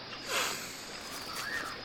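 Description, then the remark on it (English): Two short, breathy sniffs at a tree, one after the other, the first a bit louder, with a faint hiss of background noise between them and no talking. The setting is a jungle in South America, Pre-Columbian Peru. “You can tell all that from sniffing a tree.”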